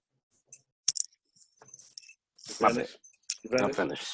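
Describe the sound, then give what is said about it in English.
Dog tags jingle in a few quick, bright metallic clinks and rattles, fairly soft and sporadic, before a voice starts talking over the tail end. “The fuck you got on dog tags?”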